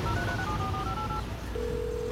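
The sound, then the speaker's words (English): A phone dials a call: a quick run of touch-tone keypad beeps, then a steady, sustained call tone, clear, with no voices. “Phone. Call Bobby.”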